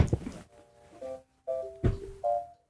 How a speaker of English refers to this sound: And bro, we're getting a phone call.